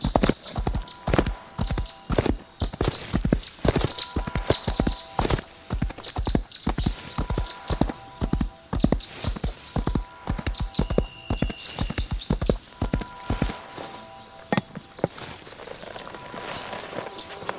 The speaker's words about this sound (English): We're off for a casual gallop. Nothing alarming.